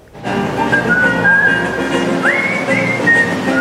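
A person whistles a lilting tune, clear pure tones gliding between pitches, fairly loud over a busy outdoor background murmur, while strolling through Granville Island in Vancouver.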